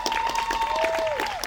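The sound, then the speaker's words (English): An audience claps steadily in a dense, continuous burst of applause for the whole moment, with a thin whistle-like tone running through it and sliding downward near the end. No one speaks. “Can you guys clap it up for her?”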